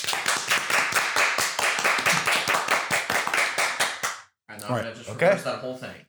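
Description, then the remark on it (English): Loud, rapid hand clapping in a fast, steady rhythm of sharp slaps for about four seconds, then a brief pause before a voice speaks. “Let's like clap right now, and you can reverse the audio.”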